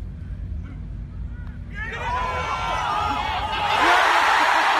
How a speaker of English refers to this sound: So obviously, by the roar of the crowd, you can tell that he makes it.